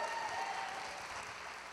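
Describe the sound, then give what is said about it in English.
An audience applauds with dense, steady clapping that blends into a continuous rushing wash, holding an even level for under two seconds with no voices standing out. “Give them a big hand.”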